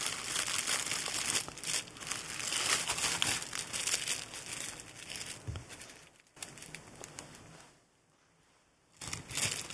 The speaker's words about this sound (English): It's a good thing your cat doesn't hear that cellophane rattling.